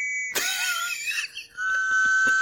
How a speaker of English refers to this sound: Well, this is just a generic, like, police whistle sound effect. But I love the idea of you hearing that and being like, wow, their sirens are weird. Like, just that sounds like a whistle, right?